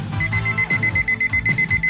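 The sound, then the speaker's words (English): A rapid string of high, thin electronic beeps from a digital watch alarm, pulsing quickly and steadily in short bursts over a low background rumble. “It was just a real quick kind of normal watch alarm sound effect.”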